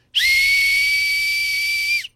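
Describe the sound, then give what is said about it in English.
A single shrill whistle blast from a hand whistle marked Department of Homeland Security, held steady for about two seconds, loud, with a sharp piercing tone over a breathy hiss, starting and stopping abruptly. “I was a little worried that if I blew this whistle, it would be so piercing it would hurt your ears”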